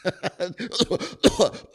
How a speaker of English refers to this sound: Just start coughing. And you know what? People will back off real quickly. They just do.